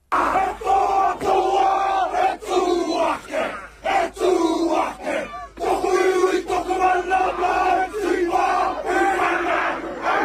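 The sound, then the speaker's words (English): Hundreds of Mongrel Mob gang members chant and shout in unison in an emotional haka as a coffin is carried through the crowd. Their trademark sharp barking calls punctuate it, loud with rhythmic bursts over about ten seconds. “Steven Taiatini's coffin was decorated with Mongrel Mob regalia as it was carried through the crowd of hundreds of gang members who incorporated their trademark barks into their emotional haka.”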